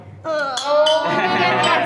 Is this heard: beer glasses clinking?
yes